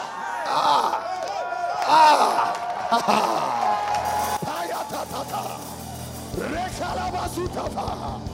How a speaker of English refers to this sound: Hey! Oh, somebody shouting, God just shower some things on you.